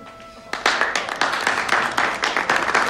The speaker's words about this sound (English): And what happens? A diamond. Yeah, and what happens? Everyone applauds.